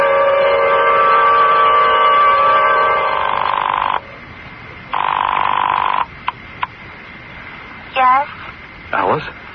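telephone ringing

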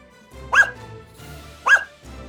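puppy barking

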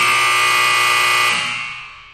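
game show buzzer

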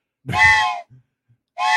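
train whistle sound effect

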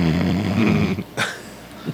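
person snoring

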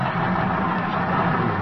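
car engine running

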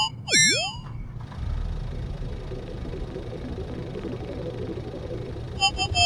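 car engine idling

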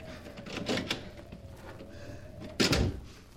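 door being opened

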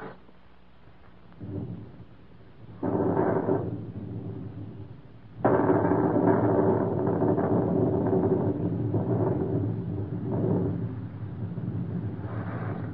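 thunderstorm with rolling thunder

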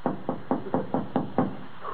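knocking on a door

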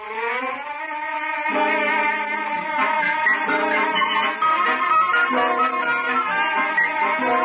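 car engine running

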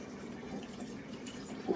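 drinking sparkling water

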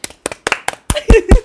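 round of applause

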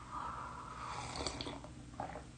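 sipping a drink

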